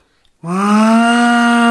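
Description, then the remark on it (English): A loud, sustained moo-like tone made by a person blowing through cupped hands, each hand shaped in a C, one over the other with thumb tips together, palms opening during the moo; starts abruptly and holds steady for over a second, rich in harmonics. “And then as you make a moo, you open your palms.”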